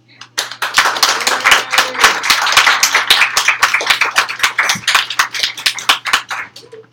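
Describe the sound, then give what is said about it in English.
A burst of audience applause for a performer being introduced on stage: many hands clapping in a dense, rapid patter that swells quickly, holds steady for several seconds, then thins out and fades. “Give it up for Candy.”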